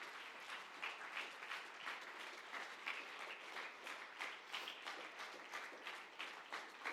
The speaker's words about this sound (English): And why don't we give the Lord a big round of applause for the leadership that God has established here.